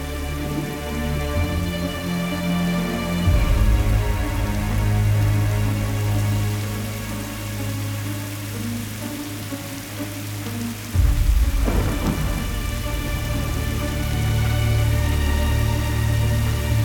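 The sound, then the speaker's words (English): Heavy rain pours steadily outdoors, a dense hiss that never lets up, with deep low rumbling beneath it that swells noticeably twice along the way. “She held the door open, and I stepped out into the rain.”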